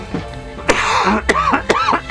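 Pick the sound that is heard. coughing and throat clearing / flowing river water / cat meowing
coughing and throat clearing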